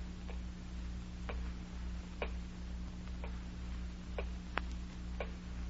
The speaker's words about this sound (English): Terrible clock. Ticking. Yeah, I know. I've been sitting here listening to it. I can't stand it anymore. I'll stop it.